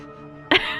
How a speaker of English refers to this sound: Just apologize for sneezing. I didn't want to mess up the audio.